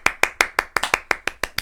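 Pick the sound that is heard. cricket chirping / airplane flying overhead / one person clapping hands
one person clapping hands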